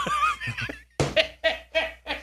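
A donkey brays: a drawn-out, wavering cry followed by four loud, rhythmic honking bursts, heard alone without any talking.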